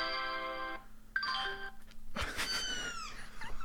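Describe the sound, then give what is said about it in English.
A steady electronic tone and a brief chime give way to a high, wavering kitten meow that slides downward in pitch, played as a sound effect with no talking. “Is this just a sound effect CD you put on? No, it's just found some sound effects. I got a kitten, man.”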